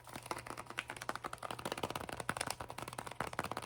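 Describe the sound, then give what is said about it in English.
Crinkling and rustling of gift wrapping paper printed with little leaves, a steady busy stream of crisp crackles over a low hum, with no talking. “I like this wrapping paper with all the little leaves.”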